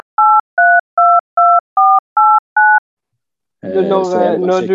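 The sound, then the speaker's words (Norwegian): A phone sounds during a call: seven short, evenly spaced electronic two-tone beeps in a steady rhythm, with pitches shifting slightly between beeps, followed after a pause by someone talking. “Når du blir ringt, så kobler mikrofonen din av, så vi har ikke hørt akkurat det.”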